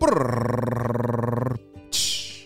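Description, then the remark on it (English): A voice imitates a drum roll with a loud, rapidly fluttering rolled-tongue sound for about a second and a half, then a brief pause and a hissing burst like a cymbal crash. “Drum roll, please.”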